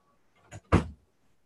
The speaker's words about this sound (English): Speaking of ditching the act, I have some weed whacker going on. I'm going to close the door in real time.